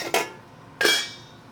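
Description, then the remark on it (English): Two sharp metallic clanks of a cooking pot being handled, each a bright bang with a short ringing tail, about two-thirds of a second apart. No one speaks. “finally, we got a pot.”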